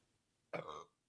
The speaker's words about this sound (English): Oh, sis. She's burping.